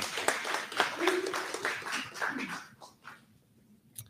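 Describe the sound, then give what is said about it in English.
An audience applauds women who plan and guide the program, with a steady wash of many hands clapping and a few voices calling out, then the clapping thins and fades away after about three seconds. “You can give these ladies a big round of applause, too.”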